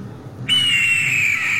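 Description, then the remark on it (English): A voice imitates an eagle's scream with a single sustained, piercing high-pitched cry that starts abruptly and holds steady for about a second with little wavering, over a faint low background. “And I am going to do my eagle scream.”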